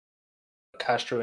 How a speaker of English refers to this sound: Wait, do that again. You cut out.